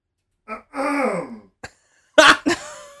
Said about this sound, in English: This guy wants to know if we have a cough button in the studio. Do you have a cough button? No, because we cough all the time.